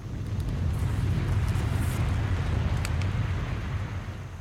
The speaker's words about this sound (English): That roar you hear and the cascading torrent you see isn't water, but snow crashing down the side of a mountain in an avalanche.